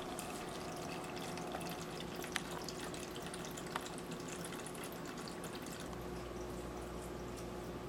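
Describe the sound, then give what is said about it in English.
Wine runs steadily through a siphon hose from a carboy and splashes into a bucket while being racked off its sediment, a continuous trickling rush with a couple of faint clicks and a low hum joining near the end; no one speaks. “That way I can pull all the wine out of the carboy into here and leave just a little bit of wine and sediment in there.”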